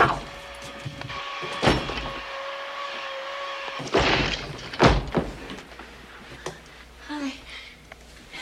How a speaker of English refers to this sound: You either open up this door or I'm going to break it down.